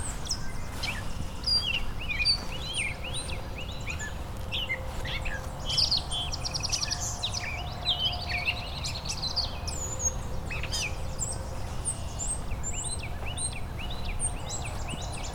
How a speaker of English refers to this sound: Got a great catbird here.